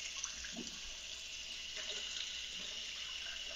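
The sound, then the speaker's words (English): A steady stream of water runs from a tap into a cup in Sweetwater, Alabama, a continuous bright hiss with faint splashing, fairly quiet, with no talking. “This is what water sounds like in Alabama for all our audiences.”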